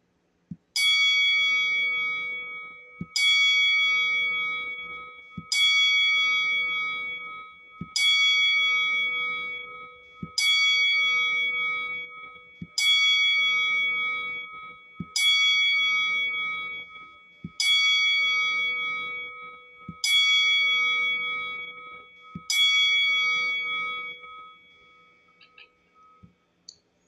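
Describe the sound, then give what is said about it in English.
A bell is struck ten times at a slow, steady pace as a 10-bell salute for wrestler Terry Funk during a moment of silence, each clear metallic ding ringing out and fading before the next, with no voices in between. “So now, folks, we'd like you to join us in a moment of silence as we do a 10-bell salute for Terry Funk.”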